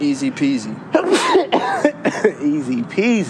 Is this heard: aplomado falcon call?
no